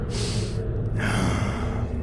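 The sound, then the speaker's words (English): A voice mimics a cloaked figure with a stag skull sniffing the air: two breathy inhalations, a short one and then a longer, drawn-out sniff, with no talking. “Suddenly you see the cloaked figure turn completely around, and the stag skull is facing directly in your path, and he sniffs into the air.”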